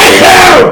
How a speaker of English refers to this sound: I apologize. That was a sneeze. I can't control that.